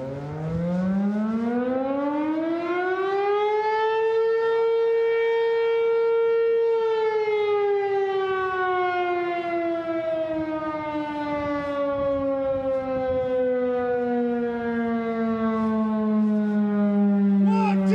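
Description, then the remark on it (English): The sundown siren of the town of Minden wails loudly, climbing to a high steady pitch, holding it for a few seconds, then slowly winding down over a long sustained tone with no voices present. “After the siren run, we walked through Minden again.”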